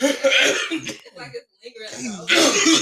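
A man coughs hard in harsh, raspy bursts, loud, with a brief pause before another rough fit of coughing.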